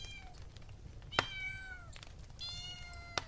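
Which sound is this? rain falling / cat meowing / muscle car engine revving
cat meowing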